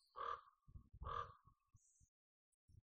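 A crow gives two harsh, raspy caws about a second apart, loud, with soft low thuds scattered underneath and a faint high chirp between them.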